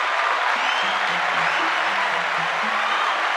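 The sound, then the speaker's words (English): A crowd breaks into steady, dense applause for a question-asker and a women's Bible study, many hands clapping at once and holding an even, fairly loud level for a few seconds with no voices over it. “So let's give Caleb and the women's Bible study a round of applause.”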